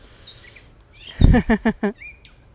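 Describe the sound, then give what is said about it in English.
A bird chirps loudly in a quick run of four or five harsh, descending notes, with softer high whistles before and after against a quiet outdoor background, as someone prays. “This bird just showed up just as soon as I started to pray.”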